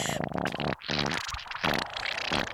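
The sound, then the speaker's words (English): A long, juicy, sputtering fart rattles out in several wet bursts over a couple of seconds, loud, with no talking over it. “Oh my gosh, that was one juicy one.”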